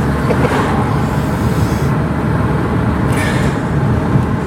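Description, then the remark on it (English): The Western Mustangs soccer team's bus, on its way to Superior Heights Field, rumbles with a loud, steady low engine drone, broken by two brief hissing bursts. No one speaks. “So that must be the Western Mustangs soccer team and their bus on the way to Superior Heights Field, where they will play the Algoma Thunderbirds and almost certainly beat them.”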